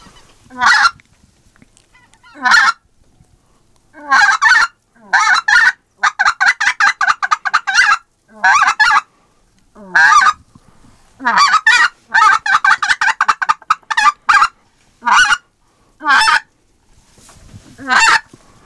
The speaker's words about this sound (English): Oh, I heard a goose there.